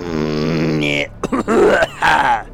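A drawn-out voiced groan gives way to a few short, harsh coughs, each a sharp burst, mixed with throaty vocal sounds and no clear speech.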